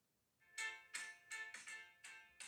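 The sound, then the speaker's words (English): A short, tinny theme tune plays quietly through a small phone speaker, bright repeated notes in a bouncy rhythm, with no one talking over it. “Is it on my phone somewhere? Here it is. It goes like this.”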